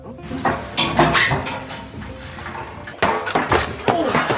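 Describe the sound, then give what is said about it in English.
Loud metallic clanging and banging, a series of sharp impacts of a steel chair striking someone in WWE wrestling, with clattering ringing between hits and a jumbled noisy background. “Hey, Becky, this guy wants to know if it hurts to get hit by a steel chair.”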